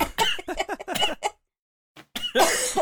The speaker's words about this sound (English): All right, get all the coughs out.